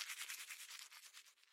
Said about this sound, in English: Morning arrives. Shower. Brush teeth.